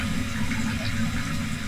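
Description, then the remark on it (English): Ice-cold water pours steadily from a tap in a bathroom, a continuous rushing splash that stays even and loud throughout, with no voices. “The water comes out of the tap, ice cold.”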